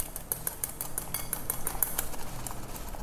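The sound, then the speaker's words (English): Rapid, steady clinking of a small metal whisk against a glass bowl as a small amount of cream is whipped by hand, a bright rhythmic ticking with no talking. “I have a bit of cream in this glass bowl over here and I'm just gonna whip it out with a small whisk.”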